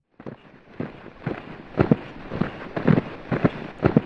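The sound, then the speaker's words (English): A crowd of kids wearing boots tramps in through the front door of a house, many heavy overlapping thuds in an uneven, hurried rhythm over a steady background rustle, with no talking. “Those kids sound like 50 men.”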